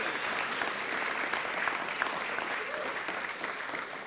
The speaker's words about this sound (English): Let's give another cheer for those who were involved. Yeah.